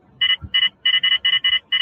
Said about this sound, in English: There's that beeping again.